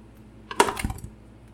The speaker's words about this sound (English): Okay, I'm going to roll the golden dice. Yeah, I have that exact same die.